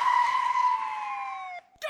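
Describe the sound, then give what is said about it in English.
A loud, steady police siren wail slowly gliding downward in pitch for over a second, then cutting off abruptly, followed by a brief burst of noise. “Yes, I can hear the sirens now.”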